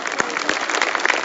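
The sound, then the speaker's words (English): An audience claps together for the computer operator, a dense, steady patter of many hands that stays loud for the whole second and a bit, with no voices heard over it. “Hand clap for”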